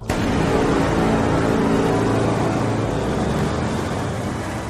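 A car engine roars steadily and loudly for several seconds, a dense mechanical rumble that holds its intensity throughout with no voices.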